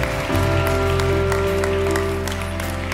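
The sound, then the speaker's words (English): An audience claps their hands steadily to the Lord at the close of an evening church service on Valentine's Day, a dense round of applause over sustained organ or keyboard chords that fill the room. “Come on, somebody clap your hands to the Lord one more time.”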